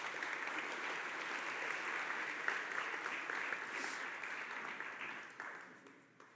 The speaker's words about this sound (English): If you guys want to give them a round of applause, they come up.